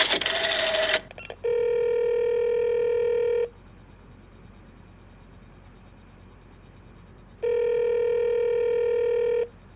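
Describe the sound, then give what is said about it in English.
A telephone being dialed to call the operator at five to eleven: a brief noisy rattle, then two long, steady electronic ringing tones on the line, separated by a few seconds of quiet hiss. “I'll call the operator again.”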